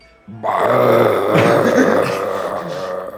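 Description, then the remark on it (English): A long, loud, guttural belch rumbles on for about three seconds after a brief quiet start, deep and strained like a drawn-out grunt. “No, that's the belch of a lifetime.”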